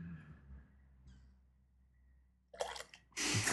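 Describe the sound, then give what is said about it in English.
A quiet, near-silent stretch gives way to two short, loud, splashy bursts of beer, not bottle conditioned, being poured into glasses, with a brief pause between the pours. “So I can pour freely.”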